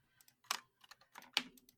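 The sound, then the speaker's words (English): Computer keyboard typing in a short burst of quick, irregular clicks and taps, fairly quiet, with no talking, as someone retypes the title of a recording. “what you heard me typing earlier is me rechanging the title of this from Untitled Recording to Oshinoko”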